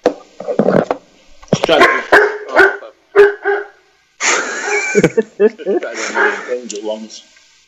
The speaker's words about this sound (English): Getting mauled by his dog, by the sound of it.